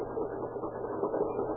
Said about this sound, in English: Still hear that pump? Yes, I hear it.